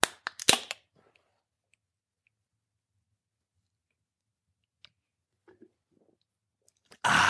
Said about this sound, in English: And then what we're going to do is we're going to rotate the tool. Hold the beer can in place to the mouthpiece. Then you're going to put your mouth on the mouthpiece and shotgun.